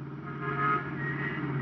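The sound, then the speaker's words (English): A steady, low engine drone with a constant rumble and a faint higher whine, an unmarked police car cruising at an even speed while following another car, moderately loud, with no voices. “A moment later, Walt and I jumped into an unmarked police car and played Follow the Leader.”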